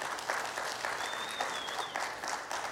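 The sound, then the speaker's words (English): An audience claps steadily for a few seconds for the speaker's wife, a dense, even wash of many hands with no voices rising above it. “I'm thinking you're giving a clap offering to her because she has to put up with me.”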